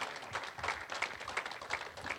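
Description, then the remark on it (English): An audience claps together as praise to the Lord in a dense, steady burst of applause, many hands overlapping with a faint rhythmic pulse, at moderate volume. “Somebody give the Lord a hand clap of praise in this house.”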